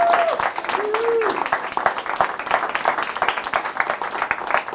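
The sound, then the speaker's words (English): A crowd claps steadily throughout, a dense rattle of many hands, with a few brief whistle-like tones rising over the applause early on. “Let's clap it up for yourselves.”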